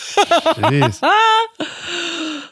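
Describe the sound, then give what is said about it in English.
A voice mimics a coughing fit: three quick, strongly voiced hacks, then a strained, rising wheeze and a long, raspy drawn-out breath, with no other sounds around it. “And she's coughing like crazy.”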